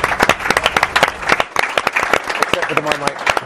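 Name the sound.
audience round of applause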